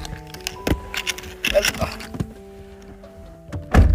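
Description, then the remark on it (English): A car seat being adjusted, a steady electric motor whine shifting pitch as it runs, broken by several sharp clicks and soft thumps, with a heavier knock at the end. “Adjust the seat.”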